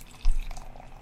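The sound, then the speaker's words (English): A brief splash of beer pouring from a freshly opened bottle into a glass, with small drips and gurgles after a soft low thump near the start. The beer is super clear, bright and straw-colored, with a white froth. No one speaks. “So we're going to pour.”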